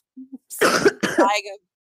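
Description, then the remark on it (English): A faint, brief throat clear, then two harsh, raspy coughs from a person with a sore throat, each a rough burst trailing into a voiced rasp. No one speaks. “I just have a sore throat. So pretty cough.”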